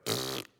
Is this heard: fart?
yes